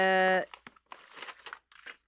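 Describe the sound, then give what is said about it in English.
A brief voiced sound at the start, then an envelope with something bulky inside being torn open: a series of quick, crinkly paper rips and rustles, moderately loud, over about a second and a half. “Well, I was wondering if you could open it because it's got something bulky in it.”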